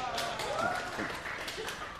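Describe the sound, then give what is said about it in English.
Sparse, quiet applause from a crowd, a scattering of claps mixed with murmuring voices and cheers, lasting about two seconds without building to a loud ovation. “That would be a good place for a rousing amen from everyone in the room. Yes. And a round of applause.”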